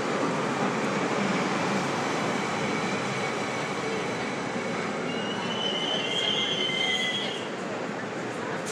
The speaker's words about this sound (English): I'm going to take you with me while we ride on the train. That's always fun. Hearing the train sounds. Hearing the ambiance.